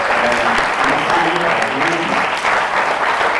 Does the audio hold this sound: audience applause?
yes